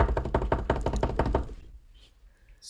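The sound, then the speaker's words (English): A quick drum roll tapped out on a tabletop: a rapid run of about a dozen loud, hollow knocks lasting over a second, then quiet with only faint background noise. “Drum roll.”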